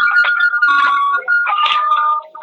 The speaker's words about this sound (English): You know, I'm out in the backyard. That's the wind chime. Oh, it's windy outside. Oh, yeah. Yeah, it's a little windy out here.